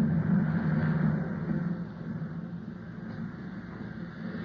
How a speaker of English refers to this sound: Oh, we're over land. He's bringing the plane down.